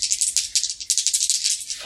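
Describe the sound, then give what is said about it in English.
Dice rattle in a quick, steady run of bright clicking bursts for almost two seconds, ending with a low thud as they land on a total of eight. No one speaks. “Through the beautiful forest, through the beautiful waterfall, and let's roll and see where you come out.”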